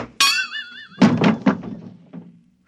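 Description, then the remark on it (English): A wavering, high-pitched cry rings out, then three heavy hammer blows land in quick succession, followed by a fainter fourth thud. “Now, quick, that hammer.”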